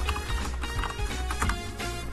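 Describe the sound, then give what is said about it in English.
Rapid, irregular clatter of computer keyboard typing, a steady stream of light plastic key clicks with no voices over it. “Yes, the lovely sounds of keyboards on the airwaves.”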